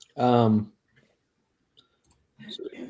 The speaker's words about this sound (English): I'm working on something. That's why you hear me clicking. Clicking away, what's that, right? What's that clicking noise? He's clicking.